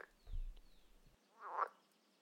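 A frog croaks in a couple of distinct calls, a low throaty burst followed by a brighter, rising croak, with no voices around.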